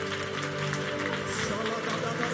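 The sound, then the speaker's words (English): An audience claps hands together as they begin to pray, in a dense, continuous patter of overlapping claps, fairly loud and steady, with voices and sustained tones running underneath. “Clap your hands and let's pray.”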